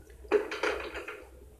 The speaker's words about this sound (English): The door open.